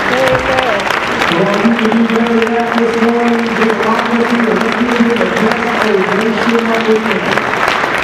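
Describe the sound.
At an evangelist's ministry gathering, a crowd claps loudly and steadily for the full eight seconds, giving a hand clap of appreciation to the Lord Jesus Christ. The clapping is dense and unbroken, with a sustained low tone held underneath for most of it and possible voices mixed in.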